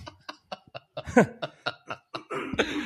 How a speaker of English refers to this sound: Gotta clear my throat for this one.